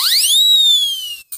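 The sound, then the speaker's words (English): A loud, shrill whistle swoops upward in pitch, then holds a long piercing note that sags slightly before cutting off, followed by a brief short blast. No one speaks. “Yep, he just came in and just blew a massive skeptic whistle on everybody.”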